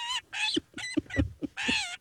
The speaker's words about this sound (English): Cue peregrine sound effect.